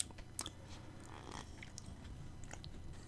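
Chewing of a small corner piece of a very dry, dense, frosted Easter lamb cake baked in a rectangle shape, with a crunchy outside; irregular crisp crunches and soft mouth sounds scattered across a few seconds, no talking.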